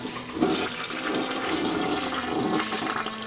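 A toilet flushes, a steady rushing swirl of water lasting a few seconds with gurgling pulses, heard alone with no talking.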